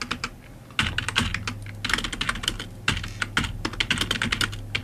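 Rapid, forceful typing of an email on a computer keyboard, with loud clacking keystrokes in dense bursts and a low hum underneath; no one speaks.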